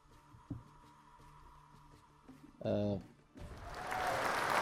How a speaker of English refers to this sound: Hit the applause for Blood Edge, baby.